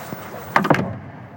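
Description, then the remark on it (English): A door swings shut with two quick knocks, a latch click followed by a firmer thud, moderately loud, then a quiet room tone fades out. “Shut the door.”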